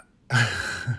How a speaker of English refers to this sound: Bless you.